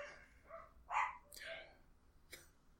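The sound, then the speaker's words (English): A dog barks in a few short, separate bursts, sounding muffled, with faint voices in the background. “And my kids are just sitting out there right now, just staring at the TV, completely oblivious to the dog barking.”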